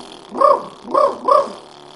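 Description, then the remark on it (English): A didgeridoo imitates the bark of a dingo, a wild dog of the outback: three sharp, yelping calls rise out of the instrument's steady low drone in quick succession, fairly loud, with no talking. “Traditional sound, dingo barking, a wild dog in the outback, right?”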